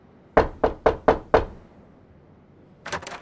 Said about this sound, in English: She says that, llamo a la puerta, I knock on the door, and wait a few seconds. Llamo a la puerta, y espero unos segundos.